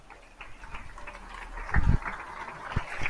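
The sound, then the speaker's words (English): Scattered applause from many neighbours echoes across an open street in Spain at 8 o'clock during the lockdown confinement, the claps fairly faint, with a louder burst of noise partway through. “people clapping”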